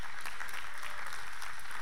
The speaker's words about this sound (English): So can we give our kids a hand clap of praise this morning?